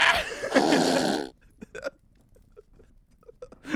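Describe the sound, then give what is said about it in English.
A loud, drawn-out burp rumbles for over a second, then fades into quiet broken by a few short, soft vocal sounds. “And then he burps really loud, and then he looks himself, it was such a nasty burp, like you could literally like feel”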